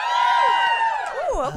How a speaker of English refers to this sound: Give me a cheer if you've listened to the podcast.